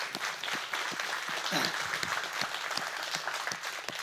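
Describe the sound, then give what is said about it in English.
An audience on the Edgewood campus applauds together to give the Lord a hand, a dense, steady wash of clapping, with sharper individual claps popping out and brief vocal murmurs or cheers mixed in, holding at an even loudness throughout. “And hey, just real quickly, in unity and one accord, can we just give the Lord a hand?”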